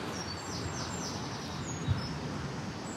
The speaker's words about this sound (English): In a patch of woodland called Crew's Hole. Despite the wind and the rain, it doesn't seem to have deterred the birds. I'm not great at identifying birds by their song, but I've seen great tits, wood pigeons, wrens, robins, blackbirds.